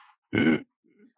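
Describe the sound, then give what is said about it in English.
A single short, loud meow from a male pet cat that is scratching things in the room, lasting about a third of a second, with a faint brief sound before it and a soft low murmur after. “This my cat is just scratching everything in this room right now.”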